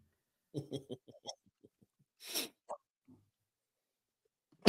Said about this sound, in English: Man, you ever get those sneezes where they hurt because they feel like they just kick you right in the middle of the chest? Oh, yeah. You get that all across your shoulders and your chest there.